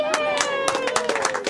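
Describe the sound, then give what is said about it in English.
A crowd in Cowichan Bay claps in a loud, irregular patter of overlapping hand claps while voices cheer and whoop in a sustained, high-pitched tone, welcoming the announcement that Cowichan Bay is North America's first Cheetah Slow community. “A crowd welcomes the announcement, the celebration made more complete with local wine, seafood, and bounty from nearby farms.”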